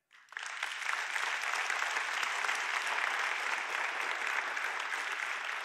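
An audience's members under 60 burst into sustained applause in an informal survey, showing they are inspired by older adults with a vibrant faith; a dense, steady wash of many hands clapping that starts abruptly and holds at an even, strong level for several seconds without any talking.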